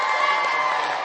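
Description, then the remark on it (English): A crowd cheers and claps for the dads in the morning, a dense, steady wash of voices and applause, with a few whoops rising above it. “So let's hear it for our dads this morning.”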